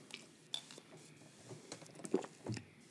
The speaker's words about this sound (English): Ew, I heard your gulp. Yeah, I know. I did it on purpose.